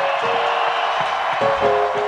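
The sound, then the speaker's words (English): A large crowd at a comedy show cheers and roars steadily for two seconds for comedian Brian Holtzman, a dense, loud wash of voices with a sustained high whistle-like tone running through it. “Can we see how loud this place can get for one of the all-time fucking late night greats, Brian Holtzman?”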